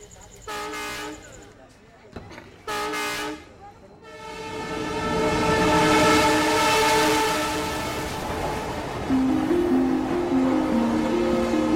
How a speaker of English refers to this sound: So how do you know a train's going to come? You hear it? The trains just come and go. There are no fixed times.